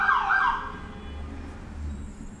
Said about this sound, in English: Yes, a lot of ambulances right now.